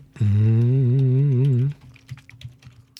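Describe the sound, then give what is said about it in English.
A loud sustained sung or hummed note with a wavering pitch ends abruptly, followed by a few quieter, irregular keyboard key clicks. “You're gonna hear me typing.”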